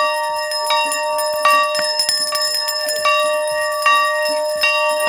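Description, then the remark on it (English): A large school bell at Mobile County Training School in Africatown is rung over and over from a bell platform in the school courtyard, each strike landing at a steady pace and blending into a loud, shimmering ring of overlapping overtones, with no voices. “stands in the middle of the courtyard at Mobile County Training School, in the center of Africatown, ringing the school's bell.”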